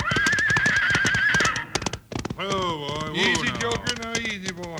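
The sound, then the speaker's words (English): A spooked horse whinnies in a shrill, quavering neigh over a rapid clatter of stamping hooves, then gives lower, strained calls as the loud stamping continues. “He's got that horse so spooked up it doesn't know what it's doing.”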